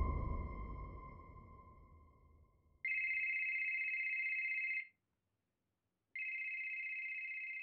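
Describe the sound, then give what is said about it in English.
A telephone rings with a steady electronic trill, two long rings separated by a short silence, following a fading chime-like tone at the start. Clear and fairly loud, with no talking. “Out of the blue, I got a phone call.”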